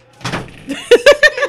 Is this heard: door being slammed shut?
yes